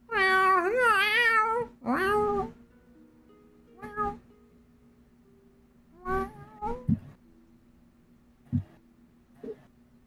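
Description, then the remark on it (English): A person imitates a cat, starting with a long, wavering meow followed by a few shorter, quieter meows spaced out over the following seconds, with a faint steady hum underneath. “Meow.”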